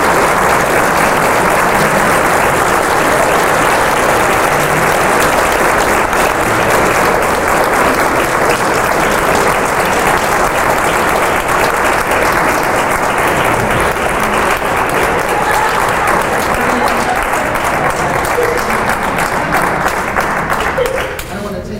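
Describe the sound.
Loud, sustained applause from a large audience, a dense wash of many hands clapping steadily for about twenty seconds, with a murmur of voices mixed in before it tapers at the end.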